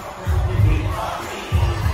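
A large crowd roars and cheers continuously at a performer's entrance song, a dense wash of many voices with swelling bursts of excitement, loud throughout.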